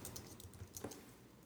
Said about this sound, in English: That's all you're going to hear over the microphone is me typing very loudly. These Mac keyboards are loud.